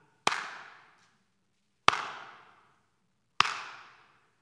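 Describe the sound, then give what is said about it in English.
Three sharp, loud claps spaced evenly about a second and a half apart, each ringing out with a reverberant tail before the next, in a deliberate slow clap with no talking. “A subtle roar would be like our generation, it's like slow clap.”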